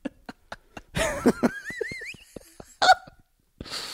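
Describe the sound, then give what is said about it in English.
A few harsh coughs burst out at uneven intervals, separated by small clicking sounds and a thin, wavering whistle in the background. “Cough.”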